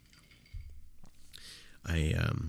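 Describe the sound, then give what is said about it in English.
A soft thump and a small click, then a breathy slurp of a sip of water followed by a louder gulping, swallowing sound with wet mouth noises at the end. “Excuse me, I'm going to take a sip of water.”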